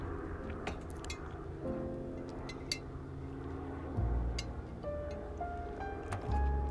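A steady, low mechanical drone of a helicopter flying overhead, heard outdoors, with a deep throbbing rumble and faint humming tones that hold and shift slightly. No one speaks.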